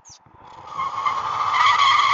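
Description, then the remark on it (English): A race car's tires squeal in a long, shrill skid that builds steadily louder over about two seconds, with engine noise rumbling underneath and no one talking. “Yeah, they be having the races out there in Denmark too. I think I already know. Racing them cars.”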